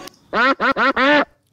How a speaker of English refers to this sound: Yep. The second shots. I had to add those ducks in there just because we didn't want to get filtered.